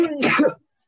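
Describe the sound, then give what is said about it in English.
A single loud sneeze: a brief voiced intake that bursts into a sharp, breathy blast, then silence. “Bless you, brother. Bless you.”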